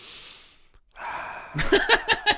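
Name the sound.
imitated heavy breathing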